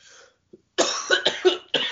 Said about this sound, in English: All right, we have to start over. Dude, I'm telling you, I can't stop coughing and shit. I'm doing it now.